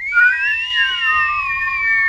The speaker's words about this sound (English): He fitted an arrow to his bow and aimed. Just as he was about to let fly, from out the forest came a long, low, eerie whistle.